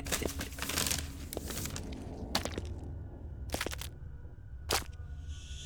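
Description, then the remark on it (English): A paper bag crinkles, starting with a dense run of dry rustling, then three sharper, isolated crackles spaced a second or so apart over a low background hum; the bag is full of poisoned meat for rats. “And so he returns, Abner the sinner, with a paper bag full of the rat's deadly dinner.”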